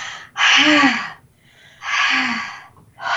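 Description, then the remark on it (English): Loud, forceful breathing: three long rushing breaths in a steady rhythm, each about a second apart, with slight voiced tone on some exhales, from a woman doing Kundalini yoga breath work. “And she's going to be doing like a yoga class, Kundalini class, and breathing.”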